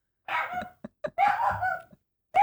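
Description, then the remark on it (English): A person's pet dog barks and yelps in a short, uneven series: a couple of longer cries broken by quick single yips, with no talking. “Well, we see what my dog thought of that answer.”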